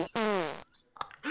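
A loud fart sound effect, a half-second buzzing blast that slides downward in pitch, followed by a short pause and a brief sputtering burst.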